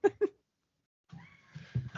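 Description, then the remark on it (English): A female domestic cat vocalizes while playing with toys: two quick, clipped chirps, a short pause, then a longer wavering meow with a throaty, pulsing edge, fairly quiet overall. “My cat is singing the song of her people.”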